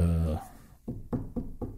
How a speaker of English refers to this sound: I always knock on wood because you can't take these good runs for granted.